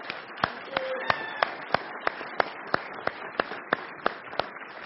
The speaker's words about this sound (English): But we want to be able to just say thank you. So can we give her a round of applause and say thank you?